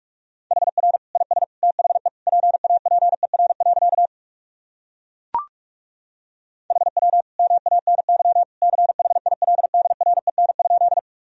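Rapid Morse code sentences keyed at 45 words per minute on a steady mid-pitched tone, sent in two bursts of quick dots and dashes separated by a pause broken by a single sharp click.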